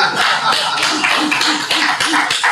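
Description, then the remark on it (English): A few people clap together in a steady, dense patter of sharp hand claps that keeps up for a couple of seconds without talk. “I guess we just gotta clap for that.”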